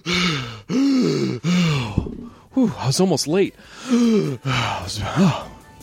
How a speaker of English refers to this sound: Sorry, guys. I was breathing so hard there.